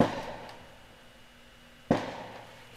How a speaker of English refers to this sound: Sorry, there's some moron shooting fireworks off in the dang neighborhood. That's what I was about to say. I heard that. Yeah, that's crazy, man.